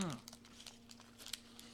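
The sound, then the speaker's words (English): Quiet, crisp crackling crunches from someone chewing a pretzel peanut butter cup, arriving in an uneven series of small bursts with no talking. “I can hear the crunch. There's like a lot the more crunch.”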